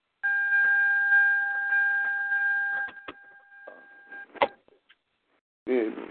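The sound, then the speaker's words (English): A car's door-open warning chime sounds as a steady, high electronic tone over background noise for about three seconds, then grows fainter and stops. A few clicks follow before a man briefly speaks. “You have to close your car door, man, or mute your phone.”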